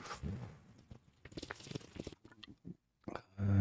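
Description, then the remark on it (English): Wet slurping and gulping sounds of someone sipping Corona beer from a bottle, a run of small mouth clicks and swallows, ending with a louder low thump or breath. “I'm going to take a sip of my Corona. Tell me if you hear it.”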